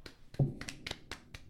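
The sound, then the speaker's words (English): Two people give a polite golf clap, a string of soft, sharp hand claps in an uneven, slightly overlapping rhythm with no voices. “There's only two golf claps going on right now, by the way.”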